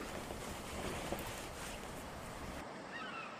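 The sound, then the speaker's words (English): A steady, rushing wash of water, small waves of Lake Sanity lapping onto a sandy shore, with a soft breezy hiss and no voices. “I was thinking of yonder waves.”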